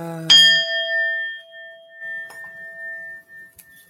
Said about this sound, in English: I got too many squirrels going on, so I have to ding the bell just to do something about all this crazy-ass energy.